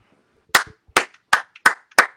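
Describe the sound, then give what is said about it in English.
Five sharp hand claps ring out in a steady, slightly quickening rhythm, each a loud crisp burst with a short decay, with no talking underneath. “First, let's clap it up for the black quarterbacks continuing to kill these stereotypes and change the narratives and, you know, break down these barriers.”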